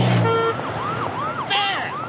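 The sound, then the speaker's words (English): A loud city siren sound effect wails in quick rising-and-falling sweeps, about four cycles in two seconds, over a steady wash of street noise. “Simple sound effect, and you've got the city.”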